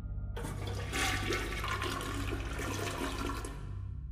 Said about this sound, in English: And the flushing of the toilet.